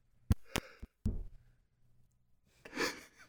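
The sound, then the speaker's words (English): Four sharp knocks on a door come in a quick, slightly uneven, clear run, followed after a pause by a soft breathy exhale. “You hear the games master knock on the door.”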